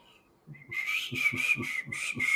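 A person whistles, breathy and unsteady, mostly stuck on one wobbly pitch with a hiss of air, in a string of short, rhythmic pulses that never quite become a clear tune.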